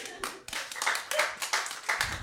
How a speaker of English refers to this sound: The universe doesn't care, and yet these people in a bowling alley theater can applaud and make us feel alive.